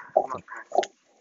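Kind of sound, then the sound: animal, dog growling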